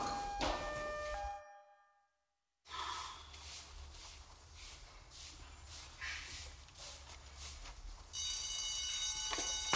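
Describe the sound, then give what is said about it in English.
An alarm rings loudly and steadily near the end, a shrill metallic ringing that follows a brief silence and a stretch of rustling, breathy background noise. “No, the alarm.”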